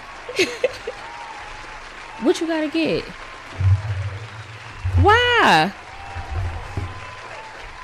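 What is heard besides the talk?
audience applause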